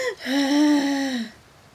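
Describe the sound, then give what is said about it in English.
A person makes a single drawn-out, wheezy gasp-like vocal sound, a voice imitating a robot's mechanical breathing as it simulates breathing while giving CPR, fairly loud, lasting about a second before fading to quiet. “Breathe through circuitry. Simulating breathing.”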